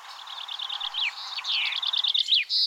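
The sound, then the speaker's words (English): A bullfinch call rings out clearly on its own: a quick, steady run of high chirps followed by brighter sweeping whistles and trills, fairly loud, with no talking. “A bullfinch cry.”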